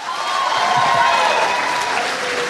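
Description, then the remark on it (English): An audience claps to show they have not seen the movie The Black Hole, a steady, dense burst of applause lasting a couple of seconds, loud throughout with a faint murmur of crowd voices mixed underneath. “Can I ask, I'm doing The Black Hole, how many people here clap your hands if you've not seen The Black Hole?”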